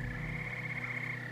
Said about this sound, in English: One thing that I really enjoy when it's snowy and you come up on a vernal pool in the middle of the woods and all you can hear is frog calls, like that's one of the coolest things I think you can experience in the woods here.